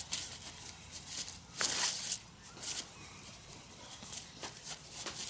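Shuffling dance footsteps of someone doing a little jig: irregular scuffs, slides and light taps on a hard floor, with one louder scraping burst partway through and a little panting, all fairly quiet with no talking.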